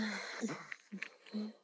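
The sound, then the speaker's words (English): A quick sneeze: a breathy, voiced intake followed by sharp, hissy bursts, fairly loud, with short vocal sounds around it. “God bless you.”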